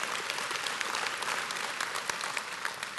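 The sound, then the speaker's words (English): A church audience claps steadily to show support for grieving members, many hands blending into a dense, even wash of applause that holds at the same loudness throughout, with no voices standing out. “Would y'all clap and let them know that you've prayed for them and interceded for them?”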